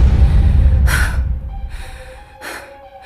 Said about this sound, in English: Something is standing in the room watching me. I gasp and stumble back.